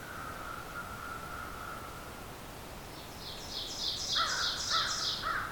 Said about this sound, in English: There's our oven bird again, and another American crow.